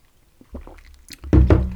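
Someone gulps down a Spanish coffee cream liqueur, bought in Tenerife, over a big scoop of ice: soft wet swallows build into two louder, sloshing gulps near the end, with no talking.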